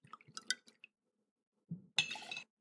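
Two ounces of Rittenhouse rye are poured briefly into a glass mixing vessel for a cocktail, a short ringing splash preceded by light clinks and drips. Fairly quiet, with no talking.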